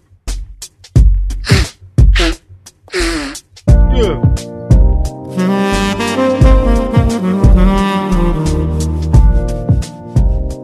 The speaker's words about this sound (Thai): สั่งขี้มูกก่อน